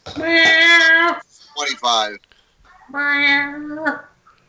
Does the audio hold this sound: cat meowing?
yes